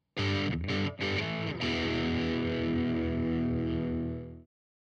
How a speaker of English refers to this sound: But let's go ahead and listen to what a distortion sounds like, give you an idea of what different drives and distortions can do for you.